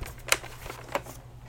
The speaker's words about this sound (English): And I think two things: pajamas and the alligator keyboard giving me lovely sounds.